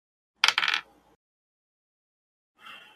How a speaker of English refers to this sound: Those hard dice rolls.